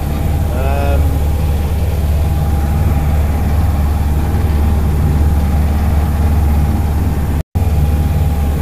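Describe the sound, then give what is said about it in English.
A fishing boat engine runs loud, a steady low droning rumble as the boat steams onto the Hands Deep reef, holding constant for the whole stretch, broken only by a split-second dropout near the end. “Just steaming onto the Hands Deep now.”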